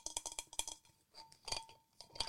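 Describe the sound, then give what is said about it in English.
Custom-made merchandise metal water bottles clink together in a quick rattling flurry, then after a pause two more separate knocks ring out with a bright metallic tone. Fairly quiet, with no talking. “We have had water bottles made.”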